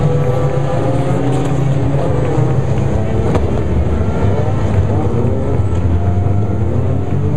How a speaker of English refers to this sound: The French Air Force does an overhead fly, and now it's the parade lap with all the cars coming out. 56 cars entered in the 2012 24 Hours of Le Mans.